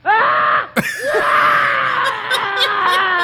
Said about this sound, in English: This is the first silent Tarzan... The silent movie Tarzan, and they had him on a show to do his yell because we obviously couldn't hear it from the silent movie.